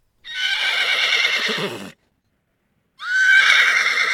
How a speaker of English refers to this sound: Is it a horse or a sheep? We can hear a horse who neighs. Excellent!